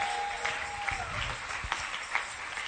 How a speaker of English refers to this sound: Guys, help me as we welcome Uncle Benny and his team. Are you clapping?